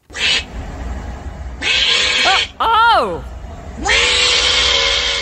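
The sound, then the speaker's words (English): An opossum screams: harsh, loud hissing bursts alternate with shrill, wavering cries that rise and fall in pitch, about three in all. A short human exclamation is heard. “He says, guys, check out the opossum. So he says they scream.”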